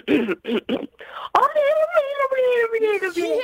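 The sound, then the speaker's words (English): A radio contest caller on the phone imitates a turkey to win Frozen 2 tickets, with a few quick, choppy gobbling bursts, then a long, loud, wavering call that slowly slides downward in pitch. “did you find one of our turkeys? I did. Can we hear it to make sure that it's rolling still alive?”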